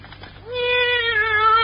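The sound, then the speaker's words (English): A single drawn-out meow from a female cat named Minerva, just let out of a bag, fairly loud, with a steady tonal cry that rises slightly and holds for over a second after a brief quiet lead-in. “Oh, well, then maybe my cat can hide out here for the day.”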